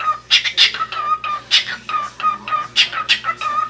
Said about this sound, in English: Finally, some parrots can literally beatbox.